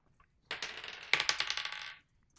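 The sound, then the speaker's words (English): Dice clatter across a hard tabletop in a quick, bright rattle of many small clicks, with a sharper burst midway before the tumbling settles after about a second and a half. The dice are rolled for perception checks in a tabletop role-playing game. No one speaks. “Roll perception checks.”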